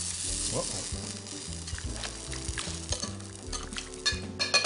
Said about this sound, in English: That's some good cheese. I'm just gonna pour that cheese sauce right in my bowl, just like that. Give that a nice toss.